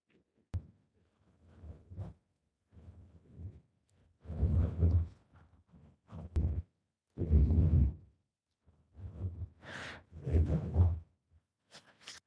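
An audience stomps and claps together in a repeating stomp, stomp, clap pattern, with heavy low thuds of feet broken up by sharper bursts of clapping, and no one speaking.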